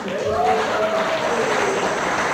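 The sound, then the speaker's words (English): An audience claps together in a dense, steady burst of applause, fairly loud and even for a couple of seconds, with a faint voice briefly audible beneath the clapping. “Give her another clap.”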